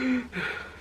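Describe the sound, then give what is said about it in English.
A voice imitates labored, struggling breathing, as when waking up unable to breathe from dust: two quick, raspy gasps in a row, breathy and strained, with a faint voiced catch on the second one. No words are spoken. “So I woke up and when I tell you, I could not breathe. Like, I was breathing like this.”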